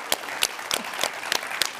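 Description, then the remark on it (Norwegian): A crowd claps steadily, a dense wash of many hands with a few sharper slaps standing out, giving a visiting team of more than 20 people a hand. Moderately loud and sustained, with no voices over it. “Låt oss ge dem en applaus.”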